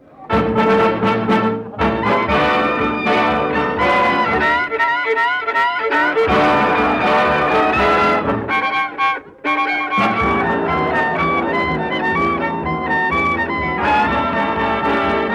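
A lively dance orchestra plays a bright, swinging tune, with a violin taking quick, ornamented hot runs over steady rhythm and horns, loud and continuous with a brief dip near the end.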